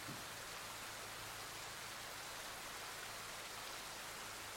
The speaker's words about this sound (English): For the next minute, can you just focus on the sound of the rain?